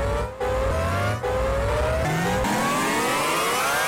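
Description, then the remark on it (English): A speeder vehicle's engine revs hard and accelerates as it drives into the city, its pitch climbing steadily through quick gear shifts, loud with no voices. “It takes control of the speeder and drives into the city.”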